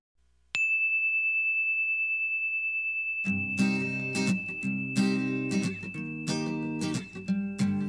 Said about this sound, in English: Okay, here comes the story bell.